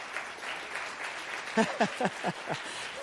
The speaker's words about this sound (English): I will always welcome spontaneous applause, all right? Doesn't matter what it's for. Let's just do that.